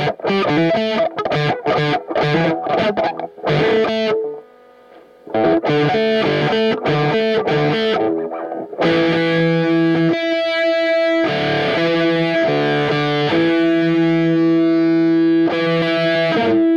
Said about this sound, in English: So it's a tone bender Mark II. Okay. It's a tone bender, so the knob is bias. So it sounded like it. It's getting squelchier, like kind of like, yeah.